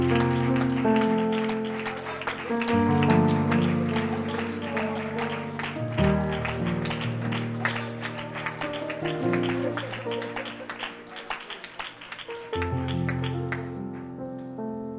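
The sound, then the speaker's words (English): An audience at a church service claps steadily and rhythmically for about fifteen seconds as a hand clap for the Lord. The clapping is mixed with sustained keyboard or organ chords that shift every few seconds. “One more time, can we give the Lord a hand clap and just lift him up and exalt him?”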